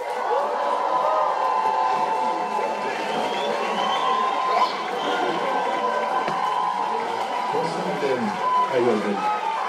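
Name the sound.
audience applause and cheering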